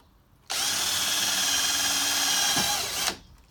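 A power drill whirs at a steady high pitch for about two and a half seconds, starting abruptly and cutting off just as suddenly, loud with no voices.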